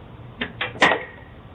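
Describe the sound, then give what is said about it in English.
Sharp whip cracks from a child cracking a whip at a house's front door snap out in quick succession, three close together with the final one loudest and ringing slightly, over a quiet background with no talking. “The child can then be seen cracking the whip twice and standing back, waiting for someone to open the door.”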